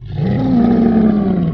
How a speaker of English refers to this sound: The snowman stops inches in front of them and lets out another deafening roar.